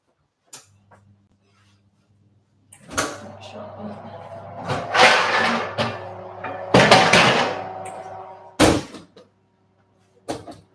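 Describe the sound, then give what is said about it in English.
Kitchen handling noises as a home oven is turned on: a few sharp knocks and clanks of the oven door and knob being worked, with rattling metal in between, fairly loud, a low steady hum underneath. “So I'll just go and turn the oven on.”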